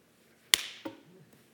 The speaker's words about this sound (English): It would be like if I had a mosquito on my hand and I started to go like this to slap him.